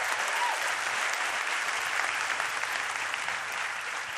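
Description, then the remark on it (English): A large audience claps steadily and continuously, a dense wash of applause that stays loud and even throughout, with no voices standing out, applauding the worship team after a prayer. “Let's give our worship team a round of applause another time.”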